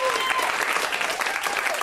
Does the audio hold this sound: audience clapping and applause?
yes